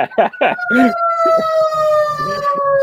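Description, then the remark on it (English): A loud, steady fire truck siren wails with a sustained high tone that drifts slightly lower as it passes, while bursts of talking overlap the start and continue faintly beneath it. “I mean, it's a fire truck, so I can't be mad.”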